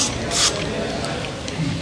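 A short, sharp hiss of a throat spray being pumped into the mouth, followed by a couple of fainter spritzes and soft breathy mouth sounds.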